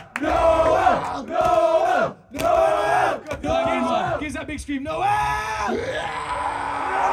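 A large crowd at a live music show chants a performer's name in loud unison, four rhythmic shouted bursts with short pauses, then breaks into sustained cheering and yelling.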